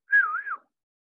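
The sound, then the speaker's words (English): A single short admiring whistle made by mouth for actor Devon Sawa, a clear tone that dips and rises again in a wavy glide, heard alone with silence after. “and I haven't looked into it yet, so I'm not going to commit to a second whistle.”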